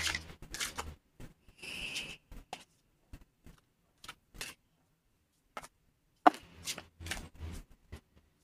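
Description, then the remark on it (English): A deck of cards being shuffled to clear the deck before a card reading: a quick papery riffle, then scattered light taps and flicks of the cards at an uneven rhythm, fairly quiet, with no one speaking. “Yeah, so let me just shuffle and just clear the deck.”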